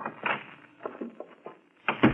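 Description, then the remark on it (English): An office door being handled: a series of clicks and rattles from the latch and handle, which has a sliding lock underneath the doorknob, ending with a firmer thud as it shuts. No one speaks. “How do you lock this door?”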